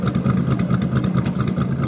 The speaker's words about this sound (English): Suddenly, the sound of an engine can be heard above the crowd. Then another engine, and another, until the roar of engines becomes wonderfully deafening. The parade of near priceless vintage Ferraris slowly rolls over the cobblestone piazza